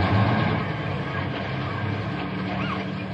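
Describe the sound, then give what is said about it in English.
A steady, loud engine rumble of heavy buses coming down a street, a continuous low drone with road noise that holds even throughout, no voices. “Say, here come the buses down the street now.”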